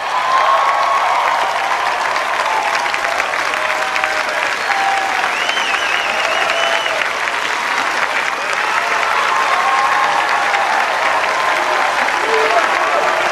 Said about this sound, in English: You get the standing ovation here. You can hear the cheering. You can't see the standing ovation.